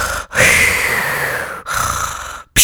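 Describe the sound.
A voice imitates Darth Vader's heavy, rasping mechanical mask breathing: one long, hissing inhale, then a drawn-out exhale, and the start of another breath at the end. No speech.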